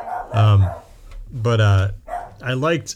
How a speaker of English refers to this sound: Nope, Gizmo's barking.